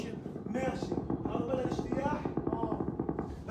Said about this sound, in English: It's a very intensive shelling going around me.